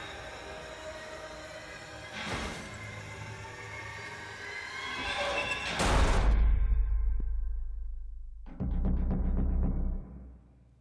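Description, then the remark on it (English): A few heavy, booming thuds land over a tense, droning background, followed by a burst of rapid, loud knocking on a door that stops abruptly. No one speaks. “Knocking.”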